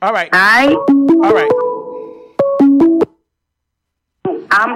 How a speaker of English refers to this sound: All right, that's our phone call coming through. All right.